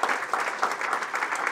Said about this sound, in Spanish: ¿Le puede dar un aplauso al Señor, hermano?